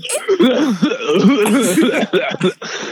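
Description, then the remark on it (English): A person coughs right into the microphone after too big a hit of smoke: a loud fit of harsh coughing with raspy, voiced bursts that run together for a few seconds, sounding partly like sputtering laughter, then one last short cough. “I didn't mean to cough right into the mic.”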